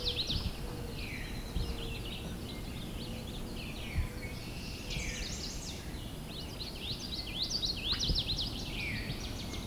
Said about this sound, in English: There's the northern water thrush.